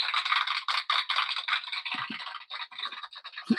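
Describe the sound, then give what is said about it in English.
A burst of canned applause from a sound effect machine: dense, crackling clapping that fills the whole stretch at steady loudness, with a few soft low thumps near the end and no voices. “I wish that clapping would not go so long. You know, I need a sound effect machine with a shorter clap.”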